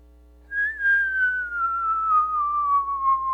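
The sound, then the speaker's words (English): A sustained high-pitched whistle of an incoming mortar shell, getting closer, begins abruptly and glides steadily downward in pitch for about three seconds, loud and clear with no voices and no impact. “And then we hear a noise, and I wanted to find the noise, but I'm hard of hearing, and so I really couldn't hear this noise now if it was going to happen, but it's a really high-pitched whistle.”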